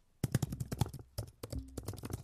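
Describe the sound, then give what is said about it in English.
Rapid, irregular clicking of the keys of a Logitech keyboard, a quick run of sharp taps with brief pauses between bursts, moderately loud and without any voice over it. “Let me see if I can give you a sound of the keys.”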